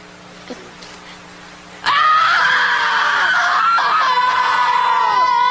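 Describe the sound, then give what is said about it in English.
After a couple of seconds of quiet background, a person abruptly lets out a loud, sustained, high-pitched scream that wavers slightly and carries on without a break to the end. “I've looked at clear cuts and burnt forest and I've felt outraged, but I didn't scream and I didn't cry. And I need to.”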